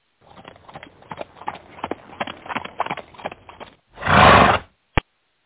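A Victorian-era horse-drawn carriage trimmed with garland and bows pulls up to the St. Nicholas Nursing Home in the snow, with a quick, uneven patter of hooves, then a horse lets out a loud, rough neigh, followed by one sharp final snort or clop.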